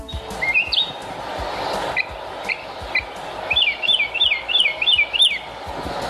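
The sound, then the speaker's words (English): A mockingbird sings outdoors: a few varied whistled phrases, then a rapid run of repeated bright chirps over steady background hiss, with no voices. “Is a finch and a mockingbird the same thing? No. Okay, then it was not a finch.”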